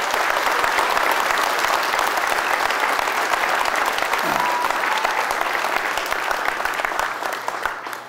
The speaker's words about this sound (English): So I definitely want, and we're going to give a very loud round of applause for the police and fire departments.